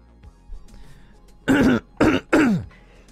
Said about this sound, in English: Excuse me, sorry about that. I don't like clearing my throat on the mic.